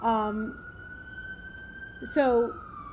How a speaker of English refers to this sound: So, sirens.